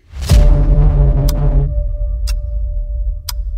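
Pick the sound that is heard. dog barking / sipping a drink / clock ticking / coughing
clock ticking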